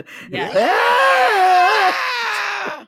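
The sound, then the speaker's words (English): A person imitates a primal scream from a song: a loud, sustained, wailing vocal cry that wavers in pitch for about two and a half seconds, raw, with no other sounds around it. “she actually had another range that she never used before. That she suddenly was especially like, that oh, primal I have to scream crap.”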